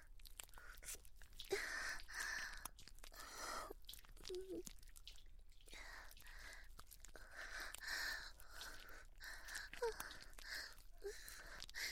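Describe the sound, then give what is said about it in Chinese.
Soft, breathy panting and gasping in irregular bursts with brief voiced catches and small wet mouth sounds, continuing steadily throughout. “没事啊，我真的没事，就是这个草药有点辣辣的，我才会不自觉发出一点点喘息声音啊。”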